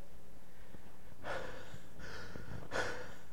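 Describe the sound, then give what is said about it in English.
A voice imitates heavy panting: three loud, breathy huffs, spaced roughly evenly, with quiet gaps between them and no words. “He's panting.”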